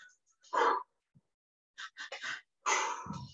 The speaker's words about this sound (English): So let's talk about everyday ways that you could practice meditation. Breathing deeply is one of them, you know.